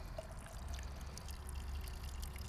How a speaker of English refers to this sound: This is the peach flavour. It smells all right, doesn't it? It's very nice. Pour it on some ice.